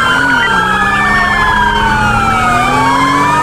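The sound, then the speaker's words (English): A fire truck siren wails loudly and continuously, its pitch gliding up and down in long sweeps over a low engine rumble. “I got eyes on the fire truck.”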